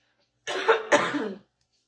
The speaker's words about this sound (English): somebody has a dry cough.